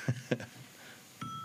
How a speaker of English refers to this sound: ring the bell.